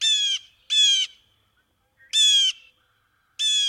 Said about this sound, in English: One denizen of Brooklyn's trees is the strikingly beautiful blue jay.